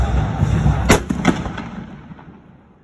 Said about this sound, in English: The Cannoneers fire a cannon when the football team scores. At one time, there was only one cannon, which was fired after every score: touchdown, point after, field goal, or safety.